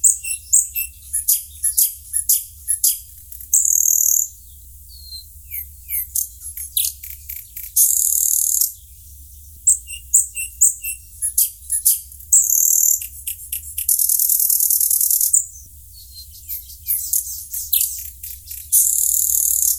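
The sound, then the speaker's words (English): A nightingale sings alone in a varied, rapid song of sharp chirps, clicks and sustained buzzy trills, with brief pauses between phrases over a faint low background rumble. “It has a beautiful song that's been described as one of the most beautiful sounds in nature.”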